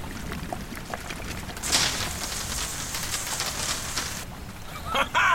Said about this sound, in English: It worked! I poured the wine into the circuits and managed to short it out to release the lock.